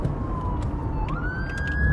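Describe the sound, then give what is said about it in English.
An ambulance siren wails steadily, its tone sliding up partway through, over a constant rumble of road traffic. It sounds loud, with no one talking. “Sorry, there's an ambulance.”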